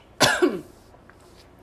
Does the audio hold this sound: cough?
yes